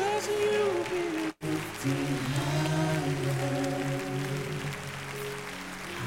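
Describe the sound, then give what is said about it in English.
An audience claps steadily as a crowd while people come forward to the front, the dense patter running under loud sustained singing with a brief cut near the start. “I bet if you'll keep clapping, we might have 10 or 15 more that'll come.”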